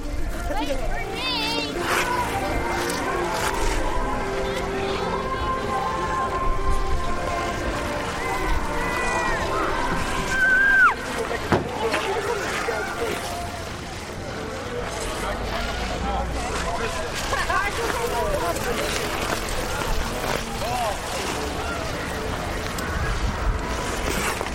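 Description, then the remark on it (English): Skaters on the outdoor Frog Pond ice rink on Boston Common in winter, with a steady wash of overlapping voices and chatter, scraping and gliding sounds throughout, and a brief rising whistle-like tone partway through. “recorded these wintry sounds at the skating rink on Boston Common known as the Frog Pond.”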